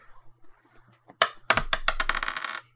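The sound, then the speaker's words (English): A die strikes a hard tabletop with a sharp click, then tumbles in a quick run of rattling, clattering impacts that stop after about a second; it is rolled to break a tie in a game and lands on a six. The sound is fairly loud, with no voices. “So I rolled a whopping 6.”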